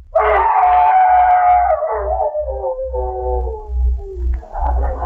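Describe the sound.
A man's voice imitates a hound's howl for a radio comedy play of The Hound of the Baskervilles on the Jell-O program: one long, loud, wavering cry that slides slowly downward in pitch for about four seconds, followed by a brief burst of noise.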